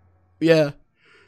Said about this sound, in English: Ooh, I hate yawning.